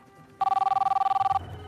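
An office telephone at an Illinois Bell store in Chicago rings once with a single burst of rapid, buzzing electronic trills, about a second long, loud and bright, then stops, leaving a low background hum.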